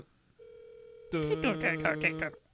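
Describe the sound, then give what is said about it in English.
A steady, unbroken phone ringing tone of a call to Mexico hums at moderate volume, and about halfway through a voice starts up over it, half talking and half singing as the tone continues underneath. “But why is it ringing like that?”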